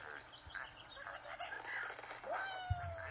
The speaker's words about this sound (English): Are you trying to get Angry Birds to come through on your mic?